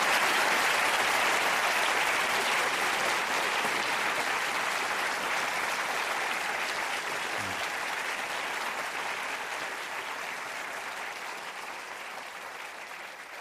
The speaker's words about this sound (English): Well, there is more applause here than in the European Parliament, I can tell you.